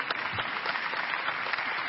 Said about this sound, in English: You want to clap for me?